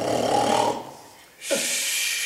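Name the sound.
snoring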